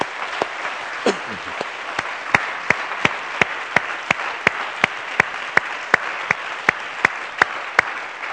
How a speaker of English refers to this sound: Why don't we all together just give all of our guests a good hand clap this morning.